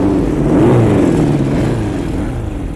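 A motorcycle engine revs steadily with rising and falling pitch, a loud continuous mechanical drone with wavering tones as the motorcycle drives along, no voices present.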